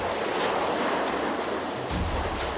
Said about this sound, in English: But the waves were getting strong and kept breaking against the side of the ship. Water was flying across the deck, and it was hard to see anything at all.